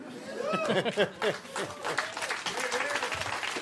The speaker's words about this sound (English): Don't applaud that. It's so stupid.